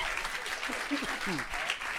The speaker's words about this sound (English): Give yourselves a round of applause for that one.